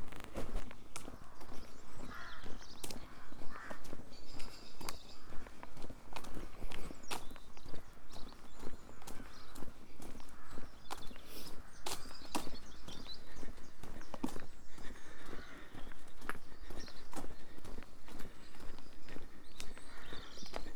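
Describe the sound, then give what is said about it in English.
Steady footsteps walk along a hard path through the village of Neverbury, a continuous crunching rhythm, with faint outdoor ambience and scattered bird chirps in the background. “Walking through the village of Neverbury.”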